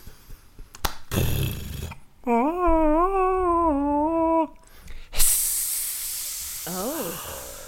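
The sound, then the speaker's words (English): A snake's hiss, a loud, breathy burst of bright noise lasting over a second, following a steady warbling melodic tone, with a short rising squeal near the end. “So there's like a drop or like a, and then there's a song and then there's a snake.”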